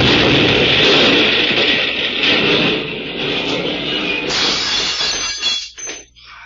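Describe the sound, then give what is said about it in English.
A car explodes in a loud, sustained burst of roaring noise mixed with shattering glass and clattering debris, then breaks into scattered crackles and tinkles as it dies away. “Oh, it blowed right up in my hands.”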